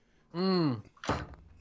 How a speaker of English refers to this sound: I just slammed my drink down.